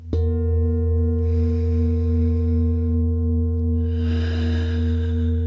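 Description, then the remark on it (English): An old Tibetan singing bowl is tapped once and rings on steadily, its deep, layered hum of overtones sustaining evenly with no fading, while soft breathy noise drifts in and out. “Allowing the deep sounds of the old bowl here to do a final integration of any work or effect the sound was having.”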